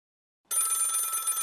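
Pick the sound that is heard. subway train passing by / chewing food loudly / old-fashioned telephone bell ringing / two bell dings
old-fashioned telephone bell ringing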